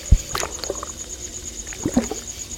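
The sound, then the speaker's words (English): A few soft knocks and thuds against a boat as a pole pokes around in the water at the front of the boat to push away debris, amid gentle sloshing and splashing water, with a faint steady hiss in the background and no voices. “Now, just go to the front of the boat and poke around in the water.”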